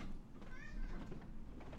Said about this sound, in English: It's our cat breathing into the microphone. We're podcasting in the living room, something we've never done before.